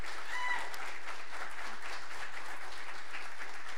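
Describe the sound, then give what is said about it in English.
A church audience breaks into steady applause one morning to thank first responders, a dense wash of many hands clapping at an even level, with a brief cheer or whistle near the start. “So could we just this morning, with a round of applause, just say thank you to all of our first responders”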